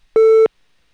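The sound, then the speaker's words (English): A single steady electronic tone on a phone line, lasting about a third of a second, loud and clear with a click at its start and end, then silence. “I don't know if I could talk to you because I hear some interference there. I hear like a touch tone.”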